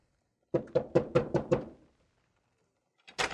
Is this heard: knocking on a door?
yes